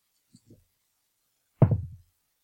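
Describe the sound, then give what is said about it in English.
A couple of faint taps, then a sharp knock with a brief clattering tail as a force die is rolled across a tabletop. No one speaks. “I need to roll a force die.”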